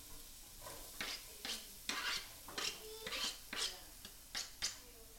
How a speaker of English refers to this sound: So I'm going to start by coating my pan in a few tablespoons of olive oil. And now I'm adding about 4 cloves of garlic and a whole onion. You can probably hear it sizzling.